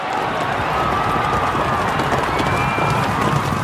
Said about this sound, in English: For those of you who don't know, the polio is a medieval horse race in the middle of the town square.